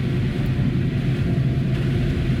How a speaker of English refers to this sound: You can hear the stereo of the splashy slush on the left and the right. It's making the car kind of jump around. I better be careful here.